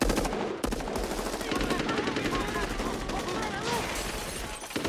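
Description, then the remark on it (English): Sustained rapid gunfire, many shots overlapping in a dense, crackling barrage as troopers and everyone else, including Frank Drebin, fire on a house, with a few voices faintly mixed under the continuous shooting. “And then everybody, including Frank Drebin, starts firing upon the house.”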